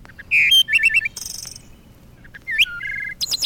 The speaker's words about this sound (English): The song of a bird.